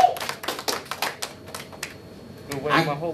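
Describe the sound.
Hands clap in a quick, uneven burst of about a dozen sharp, fairly loud claps, celebrating the Chiefs winning the Super Bowl, then trail off as a voice starts to speak at the end.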